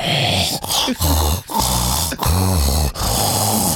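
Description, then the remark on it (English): A voice imitates a dog's heavy, raspy breathing, with several loud huffing pants in quick succession and short gaps between them. “come in my room and stand directly in front of my bed, breathing his hot doggy breath right in my face.”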